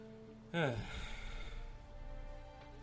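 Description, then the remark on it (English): A father rubs his eyes, then takes a sharp, loud sniff in, followed by a long, steady breath blown out through the mouth, with no talking. “Kay's dad just kind of rubs his eyes a bit, takes in a big sniff, blows it out.”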